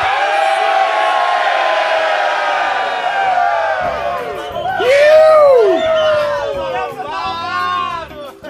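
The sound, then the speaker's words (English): A crowd at a live stage event, gathered for a group photo, yells the chant "up the fucking Swillians" together in one sustained, loud shout on a count of three, voices rising and falling in pitch before breaking into scattered cheers and whoops. “On the count of three, we're all going to scream out up the fucking Swillians as loud as we can, all right?”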